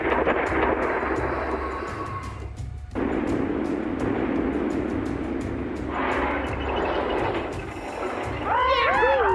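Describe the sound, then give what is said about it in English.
Sharp blasts from thunder cannons fire again and again in a rapid, uneven series, cracking over a constant deep engine rumble, with a brief whining, rising-and-falling tone near the end. “Fire your thunder cannons 4 seconds after you see the other behind you”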